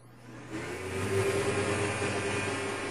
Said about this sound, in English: Let's see how this thing sounds. I don't know that I've ever had a vacuum on the air before. Right. This will be a first.